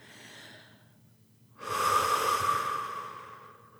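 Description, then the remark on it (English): A person releasing tension with deliberate out-breaths: a soft, airy breath gives way to a long, forceful out-breath with a faint whistling edge, holding steady before gradually trailing off. No one speaks. “Releasing the resistance now with some out-breaths.”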